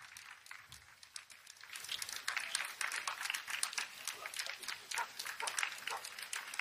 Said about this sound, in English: here's a video of Joe Biden walking up to give a speech, and listen to the pathetic clapping